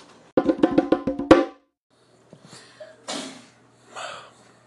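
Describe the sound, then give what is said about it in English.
A rapid, stuttering run of voiced catches builds into one sharp, loud sneeze burst, followed by a few quieter breathy sniffs and exhales. “I'm gonna wait till I start recording to sneeze a ridiculous sneeze.”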